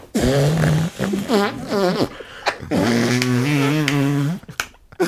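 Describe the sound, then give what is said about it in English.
A series of loud arm farts made during an ASMR bit: several squelchy, buzzing bursts with wobbling pitch, the last one drawn out longest, with short pauses between them and no talking. “I did an arm fart.”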